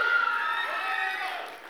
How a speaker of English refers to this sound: All right, so we'll start. We'll go by applause. Is Elf Santa? I know him. Is that the best movie of Christmas?